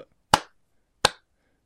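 A slow clap: sharp, crisp handclaps spaced evenly about three-quarters of a second apart, with a third just starting at the end. There is no talking, only quiet between the claps.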